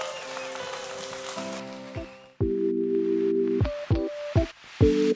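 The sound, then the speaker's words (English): A church audience claps for God after a closing prayer, a dense, steady burst of applause that fades after about two seconds, while sustained organ-like chords play underneath and then continue as short, punchy stabs. “Come on, give God a big hand clap.”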